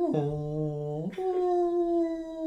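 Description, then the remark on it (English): A person mimics a whale with a long, moaning vocal tone that slides downward, then breaks upward into a higher sustained note, fairly loud with no other talking. “So I'm just going to sit here and make whale noises to piss off God.”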